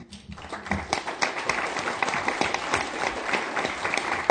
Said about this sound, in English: Well, with that, we conclude our conference. A big round of applause to our panelists. Thank you so much.